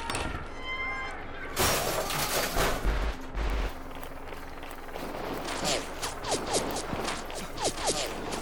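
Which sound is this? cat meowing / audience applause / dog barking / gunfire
gunfire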